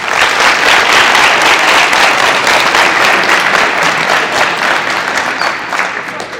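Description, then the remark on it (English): An audience applauds steadily to welcome a speaker, a dense wash of many hands clapping at once that holds loud for several seconds before tapering slightly at the end, with no voices over it. “So please give him a warm welcome and applause.”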